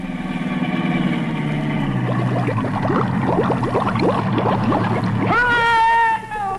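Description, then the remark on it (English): A car engine hums steadily as a sealed-up car drives into a 100-foot-deep bay, then drops in pitch as a burst of sloshing, splashing water takes over. A rising, whistling tone closes the sequence. “I don't need a bridge. I'll drive across the bay.”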